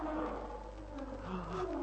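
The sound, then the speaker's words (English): A lion roars in a low, drawn-out rumble that swells and fades over a steady background hum. It sounds moderately close but somewhat muffled, with no speech. “I've heard tell that a lion won't attack directly into a fire”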